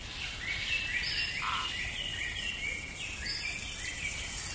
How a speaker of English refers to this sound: Imagine a tropical rainforest. During the day, it's a pointillist painting in every shade of green, flecked with tiny shafts of light that somehow penetrate the layers of leaves.